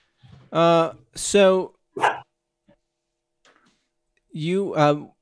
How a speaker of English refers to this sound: Wait, whose dog is that? Is that Nugget? Mine. Oh, okay.